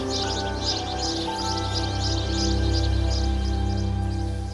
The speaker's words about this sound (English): The birds put a nice bow on that.